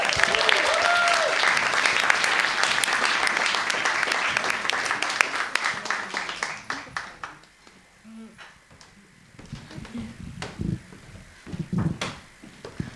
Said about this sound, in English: Okay, let's give a massive round of applause to our next storyteller